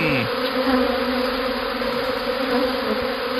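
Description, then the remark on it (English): A dense swarm of bees gathered on the front porch of a house drones steadily and loudly throughout, a continuous layered buzzing with no pauses, picked up through a slightly tinny doorbell camera microphone. “Because this swarm of bees has decided to treat her front porch as their new hangout spot.”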